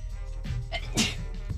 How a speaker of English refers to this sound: I'm going to sneeze, but.